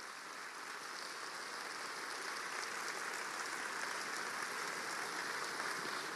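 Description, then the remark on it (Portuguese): An audience applauds in praise of God, steadily, a dense crackling wash of many hands clapping at once, sustained and fairly loud for the whole stretch with no voices heard over it. “Pode aplaudir a Ele.”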